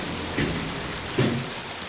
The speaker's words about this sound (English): Right, I'm at the bottom of the lift. There's water running, so I can't hear anything.